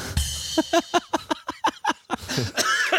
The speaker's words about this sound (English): There's the cough.